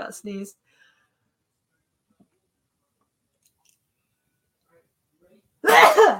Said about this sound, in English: Got sneezed. There we go. Bless you. We're all dealing with allergies right now.